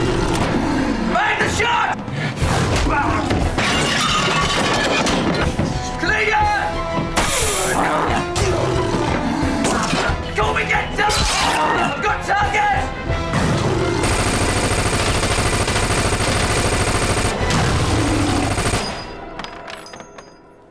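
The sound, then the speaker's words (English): Loud bursts of machine gun fire crackle through a dense, chaotic soundtrack from the film Dog Soldiers, mixed with crashes, shouting voices, a steady roar and what sounds like a wolf, before cutting off abruptly at the end. “I definitely heard a machine gun and what sounded like a wolf.”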